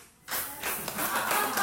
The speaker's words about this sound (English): So first, for those of you who believe that story, let's hear it. Applause.